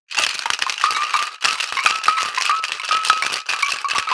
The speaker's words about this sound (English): So you want to be shaking it for about 8 to 10 seconds until the whole thing is quite cold. And I should have probably said that before I started shaking.